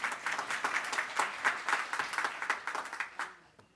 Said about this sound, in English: Big round of applause for Elf Karen.